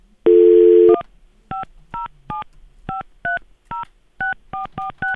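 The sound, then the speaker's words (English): A short steady telephone tone, then a quick series of about eleven touch-tone dialing beeps, each a brief two-note blip pressed in an uneven rhythm. Clear, with no voices. “Will it ring this time?”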